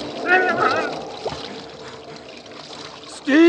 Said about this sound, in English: as he looked round desperately, scanning the black expanse about him for the sight of a single struggling head, there was nothing but jet black water, flowing swiftly.